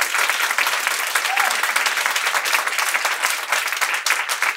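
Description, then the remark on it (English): A large debate audience applauds steadily to vote yes on whether America is too obsessed with race, a dense, sustained wash of many hands clapping at once, fairly loud and unbroken for several seconds with no talking over it. “After having heard this debate, please clap now if you think, yes, America is too obsessed with race.”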